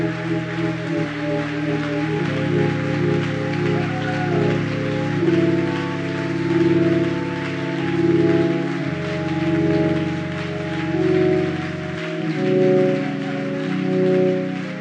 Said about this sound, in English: To give the Lord a good hand clap of praise.